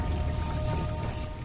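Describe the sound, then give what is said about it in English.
Steady rain falls throughout, a dense, even hiss with a low rumble underneath and no pauses. It is moderately loud, with no voices. The rain is in a film scene, produced with rain towers. “One of the writers says, "What if it was raining?" And here we are.”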